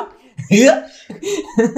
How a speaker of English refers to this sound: I hiccup.